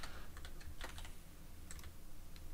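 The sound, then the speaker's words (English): Irregular, quick clicks of typing on a computer keyboard, scattered keystrokes fairly soft, over a low steady hum with no voices. “I had to move my keyboard closer.”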